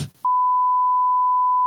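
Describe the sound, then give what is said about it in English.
A brief snatch of voice cuts off into a loud, steady, high-pitched censor bleep that holds unbroken for well over a second, masking the spoken name of the speaker's town. “Can you Beep out my community.”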